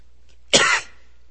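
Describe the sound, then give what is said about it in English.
A single harsh cough from a person with a cold bursts out, abrupt and loud for a fraction of a second, with a slight throat-clearing rasp and quiet before and after. “I found myself with a cold this last week, so hopefully I won't cough.”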